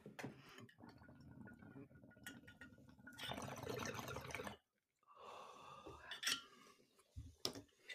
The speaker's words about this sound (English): We'll take a hit first.